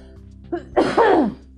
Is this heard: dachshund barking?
no